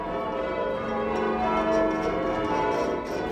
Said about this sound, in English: I suppose change bell ringing is very much like a great deal of other English activities, such as darts and golf. Deceptively simple, but it's going to take a lifetime to figure out how to do well, which makes it really fun.